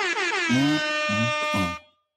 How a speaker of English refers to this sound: Also, air horns. Where are my air horns?